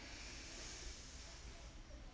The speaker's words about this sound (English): These are loud breathers.